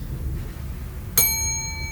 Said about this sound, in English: Oh, maybe it is. It's just a bell.